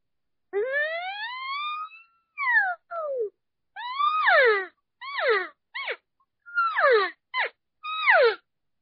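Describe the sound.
A mouth-blown elk call, placed on the tongue and raised, with air pushed from the diaphragm to make a hissing: a long, rising, whistling squeal followed by about eight shorter, sharply falling squeals with raspy overtones, loud and high-pitched, with no talking.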